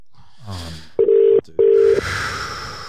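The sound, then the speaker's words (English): Two loud, steady electronic ringback tones from an outgoing phone call, each about half a second, separated by a short gap, over a faint noisy background with a brief rising sound before them. “I'm calling her right now.”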